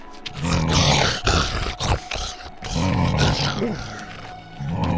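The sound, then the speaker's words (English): A small red baby Tyrannosaurus rex, about the size of a small dog, growls and snarls in loud, rough bursts with short gaps between them while chewing on a torn-down projector screen, like a roaring beast worrying at something, with no talking. “It growled and chewed on it like a giant piece of lettuce.”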